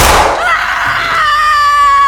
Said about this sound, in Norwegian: Med en pistol i lomma hadde han klart å fyre av et skudd rett i magen